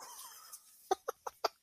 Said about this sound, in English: There like, is a bird trapped on my back porch.